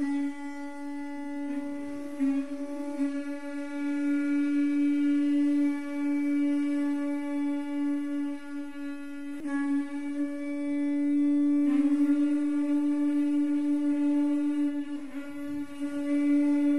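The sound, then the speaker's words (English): A conch shell blown in one long, steady, brassy low tone that drones on for about seventeen seconds, with slight wavers in loudness and no voices. “Would you like to hear some conch playing?”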